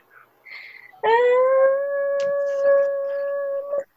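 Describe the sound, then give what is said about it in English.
A female dog lets out a single loud, sustained howl, holding one steady, fairly high pitch for nearly three seconds before stopping abruptly. A few faint, brief sounds come just before it. “She's just screaming now.”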